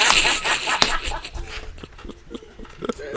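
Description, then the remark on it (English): A few sharp hand slaps ring out at uneven intervals as someone slaps hands as if performing for a crowd, one crisp smack standing out clearly, amid a busy, noisy background with no clear speech. “So when I make music and shit like that, I go out there in the middle of the night looking crazy, and I act like I'm performing for a crowd. Like, I be slapping hands and shit, like.”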